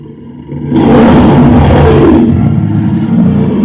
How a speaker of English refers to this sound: They wonder why the speaker system's broken every week here. It's because of 3 seconds of bear roar.